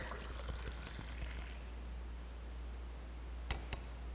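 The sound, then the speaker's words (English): Liquid is poured out of a cup during a Communion service in a faint, brief trickle lasting about a second and a half, followed by quiet stillness and two soft clicks, with no one talking. “In the same way, after supper, after he had given thanks, as we have, our Lord Jesus took the cup and he poured it out.”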